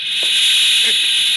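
A loud, steady high-pitched hiss of steam venting through a boiler safety valve, continuous and unbroken throughout, with faint low murmurs beneath it.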